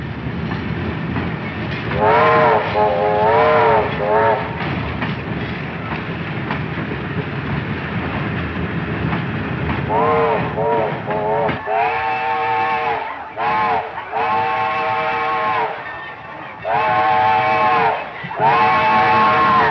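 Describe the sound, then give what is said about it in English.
A train engine rumbles loudly as it goes through a very narrow passageway, not a street. Its engine drones steadily while the horn sounds in several long, wavering blasts, and the noise echoes. “we're kind of getting started, and you get the scale and the size of that engine as it's kind of going through this really narrow, it's not a street, but, you know, passageway.”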